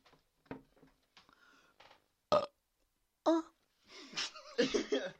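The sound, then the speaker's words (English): A drawn-out series of wet burps done as an ASMR burp, starting with soft gulping and rumbling, then a couple of sharper belches and ending in a long, loud, throaty eructation. “Well, this is going to be an ASMR burp.”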